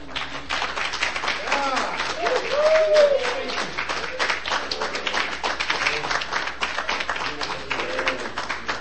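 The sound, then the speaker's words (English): An audience at a poetry reading applauds the two featured poets steadily for several seconds, a dense, even patter of clapping with a few voices calling out faintly underneath. “One more round of applause for both of our features.”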